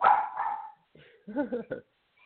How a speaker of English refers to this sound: Today, my dogs are going crazy right now.